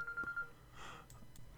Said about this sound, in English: So I don't know if you noticed, but I had to have a little break there. I got a phone call. It's the first time I've gotten a phone call during a podcast. I guess I've just been lucky.